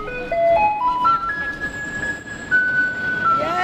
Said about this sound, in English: There was this mad dash of people swarming to the school bus yellow garbage truck and the white recycling truck.